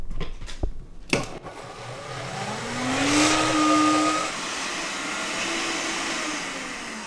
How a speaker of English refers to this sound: the juice from about half an orange, 1.5 cups of water, 2 to 3 tablespoons of apple cider vinegar, 3 tablespoons of oil. a quarter of a teaspoon of cinnamon, and a quarter of a teaspoon of garlic puree. And I'm going to go ahead and blend this now.